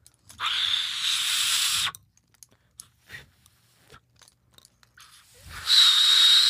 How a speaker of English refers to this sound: Oh, that's a death whistle. My friend Max gave me a death whistle. It's literally like if you get it right, it sounds like a human just screaming.